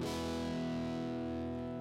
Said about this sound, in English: Turn your volume up to 10, or 11 if yours goes to 11, and that warm, messy growling sound is what you'll get. A distortion pedal achieves this effect without blowing your speakers.